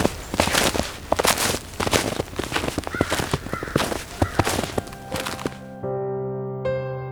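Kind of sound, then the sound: bird, crows cawing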